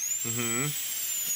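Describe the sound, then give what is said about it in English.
A person briefly mimics with their voice a dentist-style drill used by a doctor cutting into the skin of their forehead, a steady, buzzing whine held for about half a second, fairly loud, with no words. “I'm like, why are you using a dentist drill on my forehead?”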